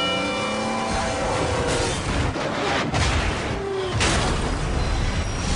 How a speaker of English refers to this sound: on the tracks, we have Bull, a million-pound freight train that takes a mile to stop